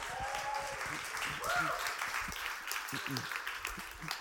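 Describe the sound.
A crowd applauds with dense, steady clapping that holds for several seconds, with a few cheers and voices mixed into the noise.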